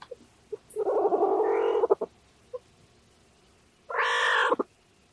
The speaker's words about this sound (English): That's a northern guina, a type of South American wildcat. It looks a lot like a pudgy cheetah cub, and those little chirrups and pirrups means that he's excited.